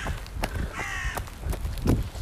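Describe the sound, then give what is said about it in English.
Crows caw in a few harsh, stacked calls, one drawn out, over a steady outdoor rumble with occasional scuffing steps of a person running at an easy pace. “I see the crowd is happy to see me, the crows.”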